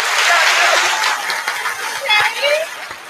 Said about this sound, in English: First off, congratulations on the engagement. Come on now. Yep. Appreciate that. Yeah. Round of applause.